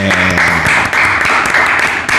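An audience applauds for a guest, a dense, steady burst of clapping that stays loud and continuous throughout, with a faint murmur of voices beneath it.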